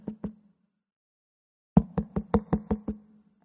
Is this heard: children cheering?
no